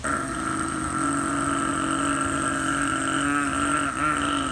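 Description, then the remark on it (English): Heavy construction equipment pouring cement at the house behind the speaker's house drones steadily, a loud, continuous engine rumble with strong harmonic hum and a faint whine above it, barely changing over several seconds, no voices. “loud construction equipment that's not in my yard. They were pouring cement.”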